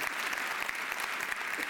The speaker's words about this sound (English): Amen. Let's give the Lord another round of applause. Can we do that this morning?